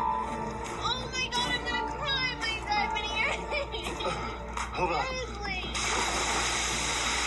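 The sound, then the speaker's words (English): Excited voices talk and shout, then a person is thrown into the ocean and lands in the water with a loud splash near the end, followed by a steady wash of churning water. “He throws me in the water. I land on the side of my head, and I feel my ear”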